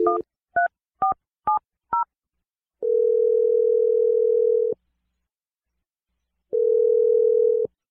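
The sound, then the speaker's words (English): Five quick touch-tone keypad beeps as a phone number is dialed to make a call, followed by two long, steady telephone ringing tones separated by a pause of silence, clear with no talking. “Anyway, let's just make this phone call”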